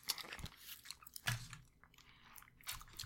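A bite into a chewy caramel chocolate candy, followed by a few seconds of soft, wet chewing and crunching with occasional sharper snaps, fairly quiet and with no talking.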